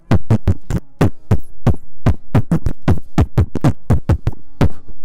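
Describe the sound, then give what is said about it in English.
Rapid, steady bursts of distant booms from anti-aircraft rounds firing, about four per second, each a sharp thump with a deep low rumble, over a constant hum. No one speaks. “It's the booms of rounds, of anti-aircraft rounds firing.”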